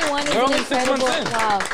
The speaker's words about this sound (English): So first of all, clap it up, everybody, for Brown Bag Podcast.